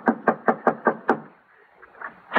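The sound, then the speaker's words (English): Six quick, solid knocks on the wooden door of an old prospector's house, in an even rhythm and fairly loud, followed by a short pause and one more faint knock. “Yeah, knock on the door.”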